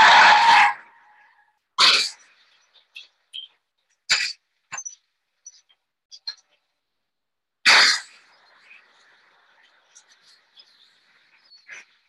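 A Mercedes Benz skids and plunges 100 meters off the road on the evening of October 14, 1988: a series of loud, harsh crashing bursts separated by pauses, with scattered clattering and rattling debris in between, without speech.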